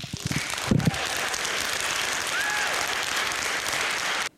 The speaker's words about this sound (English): Let's do this more, and let's give the welcome stand-up applause to this board of the directors.